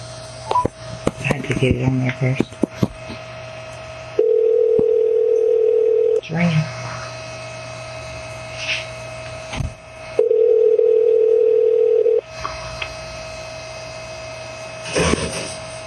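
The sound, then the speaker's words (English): A telephone ringback tone sounds twice, each steady buzzing ring lasting about two seconds with a long pause between, heard through a phone line over faint background noise and brief murmurs. “It's ringing.”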